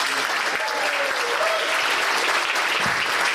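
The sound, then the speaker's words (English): An audience gives closing applause at the end of a show, steadily, a dense, continuous wash of clapping that holds at an even loudness throughout, with a few faint voices and whistles rising briefly through it. “I want to make sure we got the closeout applause there as you.”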